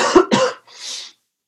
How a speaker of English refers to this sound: It's this cough.